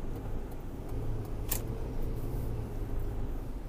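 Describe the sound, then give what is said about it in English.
Steady low rumble of a car driving on the road while merging with a little traffic, engine and tire noise constant throughout, with one sharp click partway through; no one speaks. “Sorry, I'm at the merge here, and I need to get over, and there's a little bit of traffic.”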